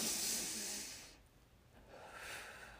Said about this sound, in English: Okay, deep breath. Hold on. Okay, into the nose.